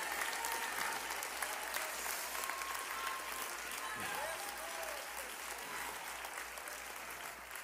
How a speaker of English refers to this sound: Clap your hands in this house. Give God praise for the word of the Lord.